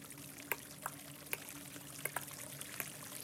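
Water trickles and pours steadily inside a living cave, echoing, with scattered sharp drips in different rhythms landing at irregular intervals over a constant low wash of flow.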